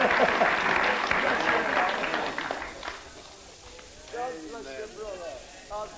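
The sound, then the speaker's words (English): A crowd claps loudly and steadily for about three seconds, the applause then fading out as a man's voice begins speaking alone. “Give him a clap.”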